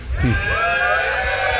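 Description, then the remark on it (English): A large live audience at the NHC 2013 conference screams and cheers together in one loud, sustained burst of overlapping high-pitched voices that holds steady for well over a second. “Everybody yeah. scream.”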